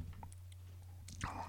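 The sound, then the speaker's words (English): A soft sip of wine, with a brief wet slurp and swallow near the end over a low steady hum, faint mouth clicks before it and no talking. “That's kind of sounds like I need a sip of this reading wine.”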